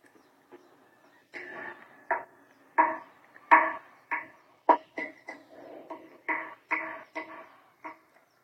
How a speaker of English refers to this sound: Saxophone, it's the most heavy instrument to do the slap technique, because mouthpiece more little, the more bigger the mouthpiece, the more easier it is.